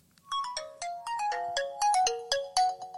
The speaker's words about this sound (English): If you guessed a Nokia flip phone, you were correct.